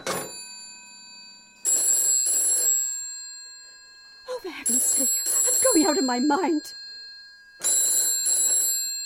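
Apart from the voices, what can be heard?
telephone bell ringing repeatedly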